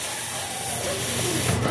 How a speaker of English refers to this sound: It just vented steam.